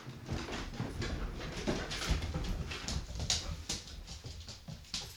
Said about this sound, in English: It's a dog party. Dog party. Yeah, hopefully. Okay, they're still back there.